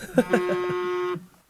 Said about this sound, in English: Did somebody, what was that? Somebody's phone buzz?